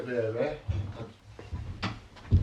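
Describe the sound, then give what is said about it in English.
A cupboard door is opened and shut, giving a few low wooden knocks and a sharper clack near the end, after a brief stretch of voice at the start. “I mean to attempt to fix this door.”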